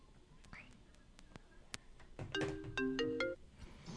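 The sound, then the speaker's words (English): A phone ringtone plays a short melodic sequence of electronic tones in the second half, fairly clear, preceded by faint clicks and a sharp tick over a quiet background. “Hold on, I got a phone call.”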